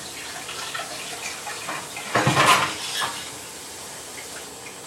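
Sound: water running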